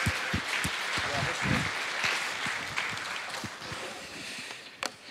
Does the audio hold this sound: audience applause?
yes